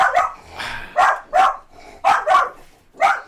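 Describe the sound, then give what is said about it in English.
A dog barks sharply about six times in quick, uneven bursts at a newly arrived person, loud, with short pauses between barks and no talking. “Sorry, my dog, anytime someone new comes in, the dog hates them.”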